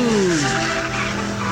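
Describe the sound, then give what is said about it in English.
A car skids with a loud, high tire squeal that slides downward in pitch over a roaring engine and road noise, intense for about a second and a half, as the car heads straight for a lizard. “It's just gonna the car's gonna go drive right into it.”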